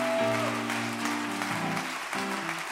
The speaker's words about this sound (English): Why don't we give all of our fathers a round of applause this morning?